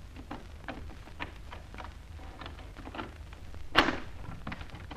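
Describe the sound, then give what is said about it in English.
A door is opened with a sharp, knock-like clunk near the end, preceded by scattered faint clicks and rustling over a low background rumble. No one speaks. “Here's another door.”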